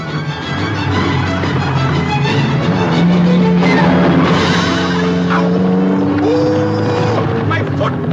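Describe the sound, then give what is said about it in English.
A car engine rumbles steadily and loudly, its droning tone shifting as the vehicle draws closer, filling the whole stretch with a dense mechanical hum. “It's a car coming that seems to be unsettling.”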